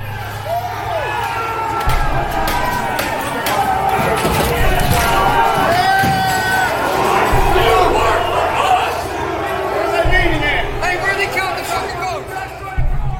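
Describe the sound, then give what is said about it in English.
A loud, agitated crowd shouts and yells as rioters breach the U.S. Capitol building shortly after 2 p.m., smashing windows, climbing through and forcing open doors, with repeated sharp bangs and smashing sounds cutting through the continuous uproar. “Shortly after 2 p.m., droves of rioters fully breach the Capitol building. They smash windows and climb through, and soon after, they force open doors.”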